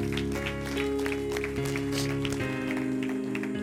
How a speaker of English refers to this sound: Thank you, guys. Give him a big round of applause.